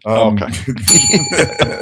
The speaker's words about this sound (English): Okay. Innuendo bell.